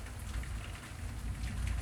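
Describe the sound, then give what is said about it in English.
Steady rain falls continuously in Santa Rosalia, a town in Baja California, Mexico, on the Sea of Cortez, a dense hiss of drops pattering on a surface with a low rumbling undertone, even in loudness, with no voices. “It was raining.”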